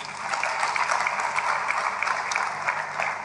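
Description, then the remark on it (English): A crowd applauds steadily for a few seconds, many hands clapping at once in a dense, even patter with no voices standing out. “Clap for him.”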